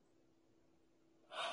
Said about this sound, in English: Wow, I'm like yawning like crazy, but trust me, it's not because it's uninteresting.